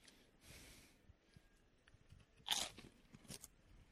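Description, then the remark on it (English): Crunchy food being bitten and chewed, with a sharp loud crunch midway followed by smaller crackling chews and breathy sounds, no talking. “We're ready, we're fresh, we're here, and we're crunching.”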